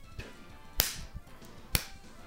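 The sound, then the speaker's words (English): A ruler smacks against a palm twice, about a second apart, each a sharp, crisp slap with a quiet background and no talking. “I got a ruler here. I'm slapping my hand with it.”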